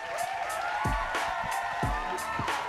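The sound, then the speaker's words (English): A steady wash of crowd noise with cheering and scattered whoops rising above it, plus a few low thumps recurring about once a second, holding at an even level throughout. “That's a pretty good crowd applause.”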